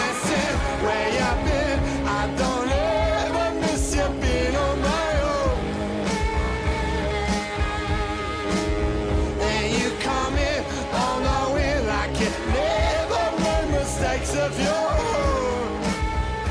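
A full-band song plays loud and steady throughout, with pounding drums, dense layered guitars and a sliding, wavering vocal line riding on top.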